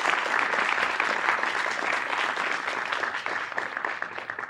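A live audience applauds steadily, dense overlapping claps forming a loud, even wash of noise that holds for several seconds before easing slightly at the end.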